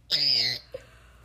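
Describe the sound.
A person lets out a single loud, shrill squawk imitating a bird call, lasting about half a second, followed by a faint short click and quiet room tone.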